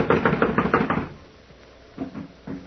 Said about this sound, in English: It's locked from the inside. Well, someone is definitely in there. I'm going to knock. Now listen closely.